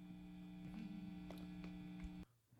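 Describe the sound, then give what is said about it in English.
A steady, loud electrical hum with strong buzzing harmonics drones continuously from a rig of 319 guitar pedals plugged into five Marshall stacks, punctuated by faint clicks, then cuts off abruptly near the end. “Is the pre-guitar hum of 319 pedals plugged into not one, not two, not even three, not even four.”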